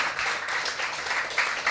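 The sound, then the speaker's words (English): An audience claps together in a dense, steady wash of applause, many hands blending into a continuous crackle at moderate loudness with a few brighter bursts, and no voices. “Yes, give yourselves a big clap. Round of applause.”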